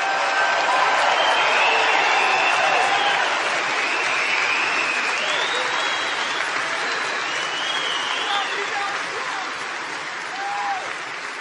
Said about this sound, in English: And I know we have many veterans in the audience today, and we want to give them a big, big, beautiful round of applause.